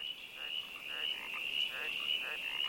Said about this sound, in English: Each frog species has a unique call. So all 246 or so species of frog in Australia has a different croak, whether it's sort of rrr, rrr, rrr, like a green tree frog, whether it's bok, bok, like a striped marsh frog, but you can tell each species.